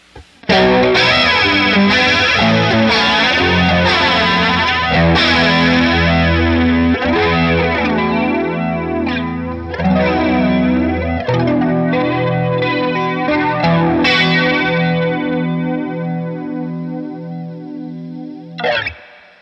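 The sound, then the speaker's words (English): A distorted electric guitar played through a flanger pedal plays chords with a sweeping, whooshing modulation effect swirling through the tone, loud, with no talking, ringing out before stopping abruptly near the end. “Well, that was interesting because now the simplicity of this one actually works to its advantage with the distortion because it never gets that overwhelming.”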